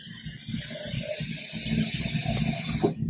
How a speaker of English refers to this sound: So what I'm going to do is I'm just going to add some water.